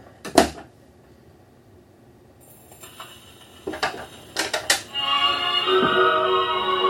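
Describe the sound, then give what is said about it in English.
A few knocks and clicks give way to a phonograph record playing at home behind the phonograph's closed cabinet doors: steady surface hiss, then muffled, boxy music filling the last couple of seconds at moderate volume. “Okay, so the doors are closed right now. You can hear it, but listen how it opens up when you, well, open the door.”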